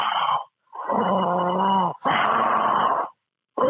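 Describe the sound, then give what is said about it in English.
Heavy, deliberate yoga breaths: long throaty inhales and exhales with a rasping, almost snore-like edge, repeating in a slow rhythm with brief silent pauses. “A bit of yoga breathing”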